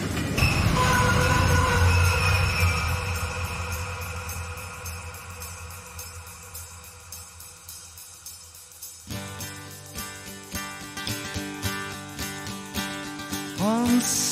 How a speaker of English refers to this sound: But we recorded the Train already maybe 1 year or years before. Yeah, I couldn't find the solution. Yeah. And then the solution was, of course, the sound of the train. That break, yeah. that made the song complete.